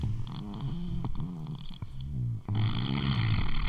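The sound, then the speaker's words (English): A long, wet fart noise: a low, buzzy, sputtering rasp that wobbles in pitch, loud and unbroken for almost four seconds apart from a brief catch near the end. “Let me give y'all a really long fart.”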